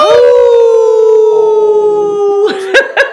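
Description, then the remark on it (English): Several people howl together like wolves in one long, loud, sustained note that slowly sinks in pitch, then breaks into a few short, excited whoops at the end. “No, we gotta howl together.”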